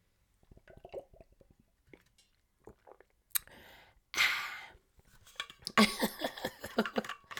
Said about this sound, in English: Y'all want to hear some, what is it, ASMR? Y'all listen to my water bottle. Y'all hear that? Listen. Yeah, that part. And I'm going to drink some water.